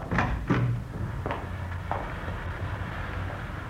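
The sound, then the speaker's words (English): A side door being opened and shut, heard as a handful of sharp clunks and thuds spread over a few seconds against a steady low background rumble, with no voices. “You can go out the side door then.”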